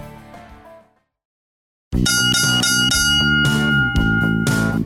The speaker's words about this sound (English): Well, there it is, the saddest sound in radio, four bells, the final round,